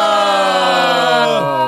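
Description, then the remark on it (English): A voicemail beep: one loud, steady electronic tone with a buzzy, harmonic-rich quality, held for well over a second before its pitch drops slightly just as it ends. No voices. “Did it beep? I think it did.”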